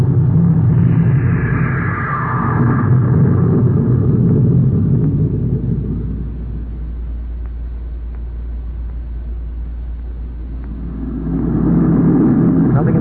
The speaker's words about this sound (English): Close port. Fire jet. Fire jet. Up, ship it away.